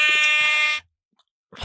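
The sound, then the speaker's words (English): A loud, harsh electronic quiz buzzer, pressed by a contestant to answer a question, blares for just under a second, a rich harmonic drone that cuts off abruptly, followed by a brief silence before another sound begins. “So bad at pressing the button.”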